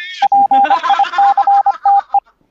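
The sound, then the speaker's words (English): A rapid, uneven string of about a dozen short electronic beeps at one steady pitch, loud, made by a dying headset, with a muffled voice murmuring underneath. “Dude, I killed my fucking headset last night.”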